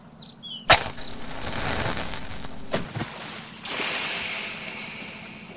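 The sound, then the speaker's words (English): A sharp splash is followed by a sustained fizzing, sputtering hiss as a burning flare, meant to burn underwater, is plunged into water and snuffed out, with a second crackle and a brighter surge of hiss later on. “The water seems to have snuffed the flame.”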